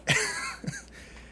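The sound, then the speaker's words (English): Two quick coughs, a sharp first burst followed by a smaller second one about half a second later, with no talking. “Excuse me, I'm going to cough.”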